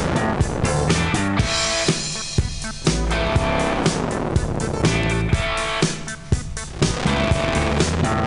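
A motorcycle engine roars loudly, its throaty rumble sustained across the whole stretch with gritty, pulsing revs and no voices.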